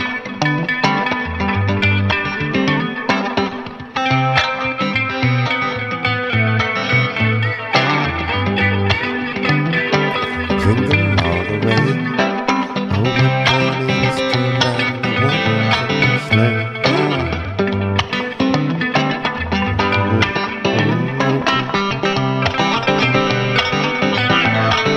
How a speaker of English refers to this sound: That's Jingle Bells.